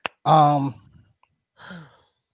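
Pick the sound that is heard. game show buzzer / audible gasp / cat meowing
audible gasp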